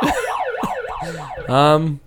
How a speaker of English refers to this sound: fire alarm.